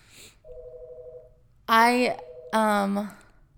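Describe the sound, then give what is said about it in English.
A phone rings: a soft steady electronic tone, then two loud, bright ringtone bursts in quick succession, with no talking over them. “And, ooh, we're missing a phone call.”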